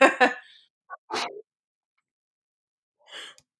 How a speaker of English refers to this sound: Sorry, I just sneezed. Bless you.